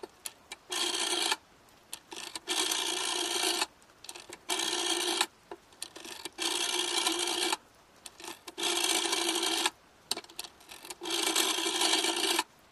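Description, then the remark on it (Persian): A telephone number being dialed on a rotary phone: about nine loud whirring, rasping bursts, each around a second long, separated by short pauses, with no voices. “به طرف گوشی می رود. شماره می گیرد.”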